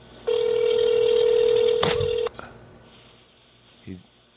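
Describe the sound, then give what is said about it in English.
An outgoing phone call to people on a golf course in Colorado rings: one steady two-second ringback tone on the line, a sharp click near its end, then a quiet, hissy line with a faint brief thump. “Hopefully they'll answer. They're on a golf course in Colorado. I'm sure someone's teeing off, and the phone's probably in there.”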